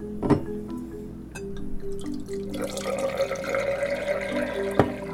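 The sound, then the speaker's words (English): Wine pours steadily into a glass, a bright gurgling stream building in pitch as it fills, with a couple of sharp clinks at the start and end, fairly quiet. “All right, I'm going to get my wine going.”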